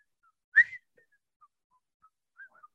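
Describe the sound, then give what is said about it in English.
A faint, breathy whistle picks out a TV theme tune in short, separated notes that wander up and down in pitch, with one sharper note near the start and no talking. “You can't whistle and smile at the same time.”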